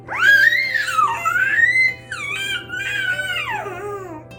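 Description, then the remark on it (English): A four-month-old baby boy lets out shrill, high-pitched, pterodactyl-like screeches that swoop up and down in pitch, two long squealing calls with a brief break between, loud and alone with a faint steady hum beneath. “His newborn cry has been replaced with these screeches that kind of make him sound like a pterodactyl.”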